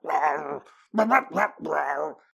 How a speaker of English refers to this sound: All of a sudden, Jasper starts to bark really loudly.